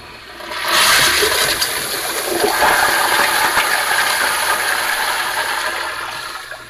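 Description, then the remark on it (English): A toilet flushes, a loud rushing swirl of water that surges in within the first second and holds steady before draining away near the end. No voices. “Anyway, let's flush that out. Let's flush that out.”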